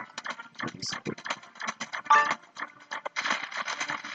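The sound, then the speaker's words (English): Rapid, clattering bursts of coins being collected in a video game while breaking boxes, a dense run of quick metallic clicks and jingles with a brief bright chime midway, steady throughout. “Coins.”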